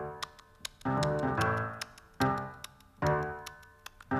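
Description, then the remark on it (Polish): A clock ticks steadily at a quick, even pace, crisp, while several rich, ringing tones swell and fade between the ticks like chimes striking. No one speaks. “Zegar już piątą godzinę bije męża, bo późno przyszedł do siebie.”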